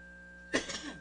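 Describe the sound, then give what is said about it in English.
A single sharp cough bursts out, followed by a brief raspy throat-clearing rumble, with quiet background otherwise. “I'm telling you what, this cough is going to be an ongoing thing all day today.”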